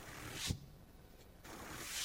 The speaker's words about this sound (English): The Baptist shuffle is not a dance. That is when you hear the pages of everyone's Bible.